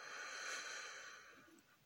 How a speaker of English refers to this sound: breathe out, breathe in, breathe out, breathe in, breathe out, breathe in, breathe out, breathe in, breathe out.